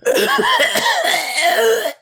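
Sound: cough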